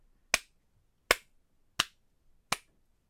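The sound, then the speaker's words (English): A slow clap: four sharp, crisp claps spaced evenly about three-quarters of a second apart, each clear and alone with nothing but quiet between them and no one talking. “I just got to give that a slow clap because...”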